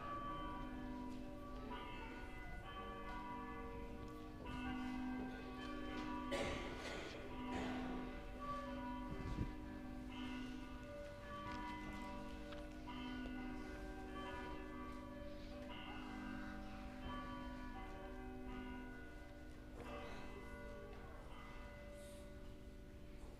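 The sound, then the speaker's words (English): Refurbished church bells, just blessed during a church service, ring out in a steady, overlapping peal, their strikes blending into a continuous shimmering drone of tones. The ringing is full and sustained throughout, with no voices. “The Lord Almighty, the Father, the Son, and the Holy Spirit bless these refurbished bells and all who hear them.”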